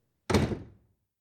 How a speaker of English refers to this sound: He pulled back the jerky, shaky door and came forth from the gloom into the air.